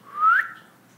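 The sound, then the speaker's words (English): A single short whistle from a person, a clear tone that slides upward in pitch and then cuts off, moderately loud, with no talking. “You weren't poor before that whistle, and now bank account is $0.”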